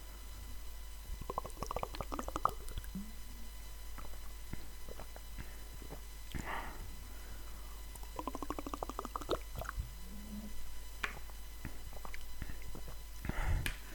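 person drinking water

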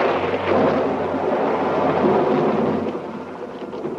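thunder

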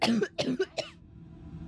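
coughing

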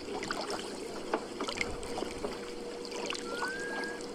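loud rushing river water

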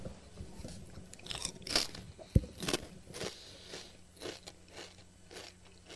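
crunching a chip

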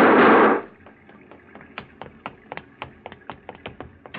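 gunshots

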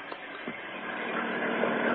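car engine running

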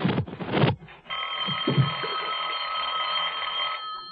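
telephone ringing

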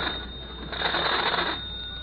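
telephone ringing

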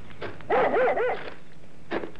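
dog barking excitedly

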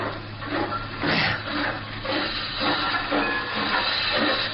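steam locomotive hissing steam

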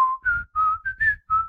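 person whistling a tune

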